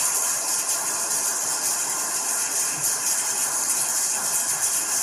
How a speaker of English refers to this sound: That's pushback, people. Listen to the applause in the crowd.